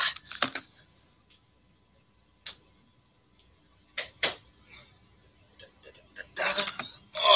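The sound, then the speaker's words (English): A door creaks in short, scraping bursts, with a few clicks and knocks in between and a louder rustling creak at the end as the speaker shuts their door. “Let me close my door here.”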